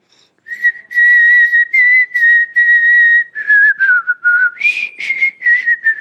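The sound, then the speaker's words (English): Loud, clear whistling by a woman as she worships carries a melody in a string of sustained and sliding notes, pitch dipping in the middle then rising again, with no voices alongside. “But when that woman worshiped, she whistled at the top of her lungs.”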